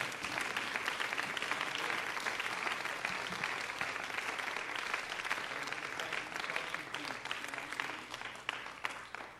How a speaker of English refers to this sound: Why don't you clap your hands to the Lord and give him praise?